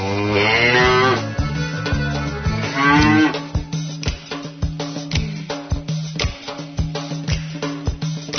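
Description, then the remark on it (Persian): A cow moos twice in long, loud, drawn-out calls near the start, followed by a steady rhythmic beat of percussive music with no talking. “آی گاو، به نظر شما انسان اشرف مخلوقاته؟”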